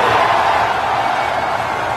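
A loud, sustained crowd roar with cheering and applause for Elon Musk, a dense, steady wash of noise that holds at full strength for a couple of seconds without any single voice standing out.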